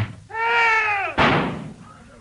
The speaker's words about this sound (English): Watson, old fella, just place yourself outside the door, exactly where the corpse was standing. Now, I shall close the door.